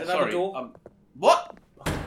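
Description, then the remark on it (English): A heavy thud as a person walking through bashes their nose on a fire door, following brief vocal sounds from the person. “There's a fire door. Thank you. I just bashed my nose.”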